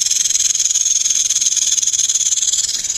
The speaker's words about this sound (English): So we'll put a rattlesnake in our barnyard.